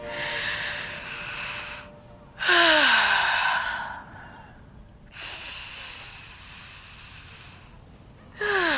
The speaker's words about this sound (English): Gross. Stop breathing into the phone, please.